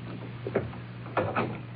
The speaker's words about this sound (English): Close the door.